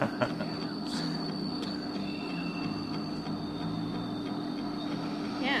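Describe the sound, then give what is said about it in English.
A steady low rumble of a subway train sampled in a song, with sustained high-pitched tonal whines like wheels or motors, continuous and fairly loud, with faint clanks near the start and no voices. “I think they sampled like a subway.”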